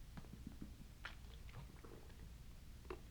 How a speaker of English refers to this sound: But I'm just going to sip my water incoherently.